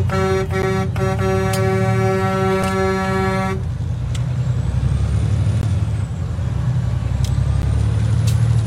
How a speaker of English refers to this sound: I just want to get on the highway so I don't have to grind. Push this button. Oh, look! There's tons of trucks.